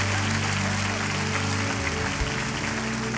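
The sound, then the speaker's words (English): An audience claps loudly and steadily throughout, a dense, continuous wash of applause with sustained musical tones humming underneath. “Come on, if you believe in this morning, put your hands together in this place.”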